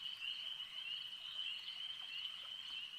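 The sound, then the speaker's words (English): A dense chorus of frogs croaking in a swamp as three large frog-like creatures appear, a steady, high-pitched trilling drone that holds at an even level throughout with no pauses and no voices. “As three large frog-esque creatures appear.”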